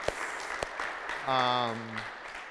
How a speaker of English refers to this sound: It's okay to give him a round of applause, because I really give him a round of applause.